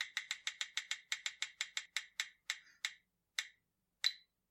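A character wheel bearing different personalities spins, ticking rapidly at first, sharp bright clicks in a fast steady run, then slows with widening gaps until a last few isolated ticks as it comes to rest. No talking.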